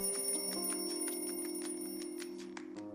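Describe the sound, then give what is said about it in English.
An alarm clock rings continuously, a steady metallic bell tone with rapid repeated strikes, loud, with no voices present. “The alarm rings.”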